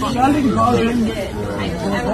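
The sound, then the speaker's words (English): Steady crowd chatter fills a building permit office in Mississauga, Ontario, many overlapping voices blending into a continuous murmur with no single speaker standing out, holding an even, moderate loudness throughout. “Notice anything about the crowd here?”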